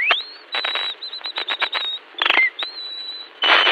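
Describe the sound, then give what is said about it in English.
A wren, a small bird, whistles a high, bright song in the early morning: rising sweeps that hold a clear steady tone, broken by quick buzzy trills and chattering bursts, loud with no talking. “The wren is a small bird that whistles early in the morning like this.”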